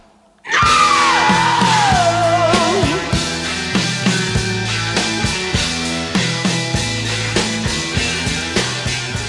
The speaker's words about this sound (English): I'd like to ask you guys, where do you rate that scream among the great screams of rock and roll?